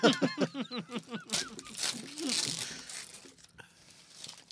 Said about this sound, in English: That's wrapping paper, folks.